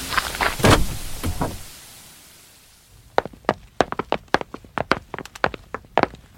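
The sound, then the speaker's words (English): A locked door being picked open with a bobby pin: a rough scrape and rustle at first, then a quiet pause, followed by a string of small, sharp metallic clicks and ticks, uneven in rhythm. “It's lovely, but how do you open the door? Your bobby pin.”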